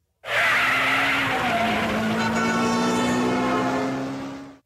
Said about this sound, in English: Oh, and so here, this is, you can make your own car screech off. Okay. You can just tap that.